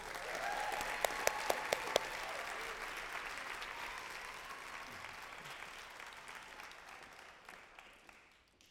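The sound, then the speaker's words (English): At a story slam, an audience bursts into steady, dense applause for a storyteller, a few sharp louder claps standing out early on, before the clapping gradually thins and fades away over several seconds. “So tonight, I give a big round of applause”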